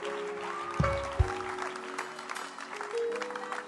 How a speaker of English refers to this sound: Oh, keep clapping for them. Keep clapping. What a blessing.